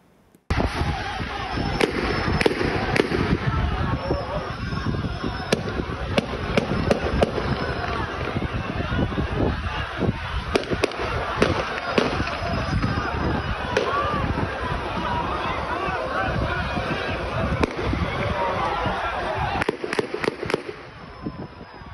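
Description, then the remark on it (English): Sharp gunshot cracks ring out repeatedly and irregularly over a loud, dense roar of a restless crowd, with shouting voices throughout and several shots bunched close together. “We saw that there were tires that were set on fire, and then you had the gunshots ring out as well.”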